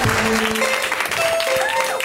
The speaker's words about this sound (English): Put your hands together. Get ready to clap your hands together. Put your hands together.